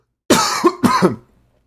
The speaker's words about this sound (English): Yeah, I just had a bit of a cough.